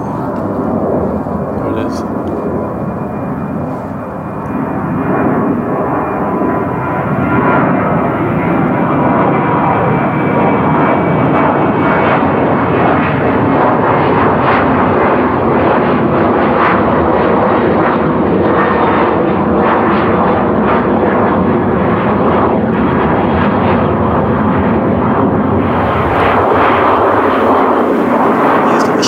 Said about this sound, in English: Hear the planes?